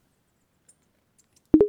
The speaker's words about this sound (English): My watch beeped to announce the delivery.